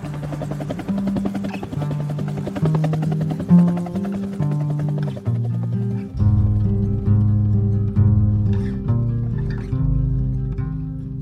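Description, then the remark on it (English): A helicopter drones steadily and loudly throughout, its low mechanical hum and whine holding constant with a shifting pitch. There are no voices. “Remember on the way out, them asking, hey, ever been in a helicopter before?”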